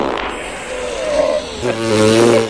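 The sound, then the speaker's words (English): A loud, buzzy fart sound plays alone, a rasping squeak that holds for a moment and then drops into a deeper, steadier blast lasting about a second. “Oh, somebody's stepping a duck.”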